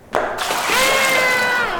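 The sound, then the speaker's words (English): A sudden burst of water splashing down onto a stage, followed by a steady rushing gush that keeps pouring loudly for over a second. “The water tank wasn't supposed to be brought out until Act 2.”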